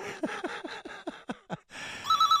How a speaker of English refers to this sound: And the fucking phone rang again.